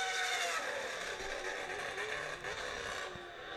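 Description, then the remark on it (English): A 2011-era Formula One V8 engine at Montreal screams at a high, raspy pitch, holding a steady, sustained note with a slight waver for several seconds, loud throughout with no voices. “not decibel, but like a very high note of the very high pitch engine sound.”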